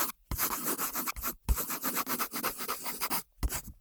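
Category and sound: tool, pencil writing on paper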